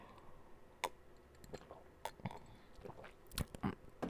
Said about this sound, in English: Hold on, let me take a sip because this is getting a little bit juicy, okay?